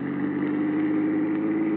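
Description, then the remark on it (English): A steady, low engine drone holds throughout as a shiny new Cadillac drives off from an airport parking lot, the motor humming evenly with a faint rising tone, loud and continuous with no voices. “Earl Poorman had pulled a shiny new cad into the airport parking lot, and we took off.”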